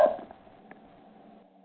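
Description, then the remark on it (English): The speaker's dog gives a single short bark at the start, fairly loud and slightly echoey, fading quickly into a quiet hum with one faint small click afterward. “That dog knows why it's important. Yes, my dog.”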